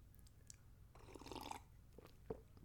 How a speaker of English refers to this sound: Quick sip of water, boss. Don't mind me, boss.